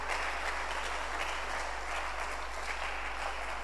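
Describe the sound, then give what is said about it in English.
A church audience claps together during a service in a steady, dense burst of applause that holds at an even loudness for the whole few seconds, with no voices standing out. “Clap for her.”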